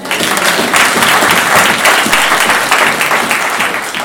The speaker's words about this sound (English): A round of applause for our musicians.